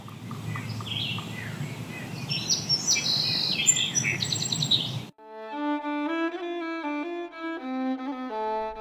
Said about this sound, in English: In this place, it's just me and those birds.